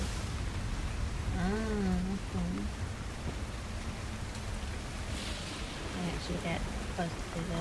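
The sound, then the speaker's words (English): Wind-driven rain hisses steadily and loudly throughout, beating against the stone monoliths of a stone circle by a cliff edge, a dense continuous wash of noise, with a couple of voices briefly talking beneath it. “And the wind and the rain as it dries, as the wind is like driving itself, the rain as well, beating off the stone circles, the stone monoliths.”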